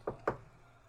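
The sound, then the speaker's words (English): Two quick, fairly soft knocks on wood, spaced about a fifth of a second apart, followed by quiet. “I was just knocking on wood.”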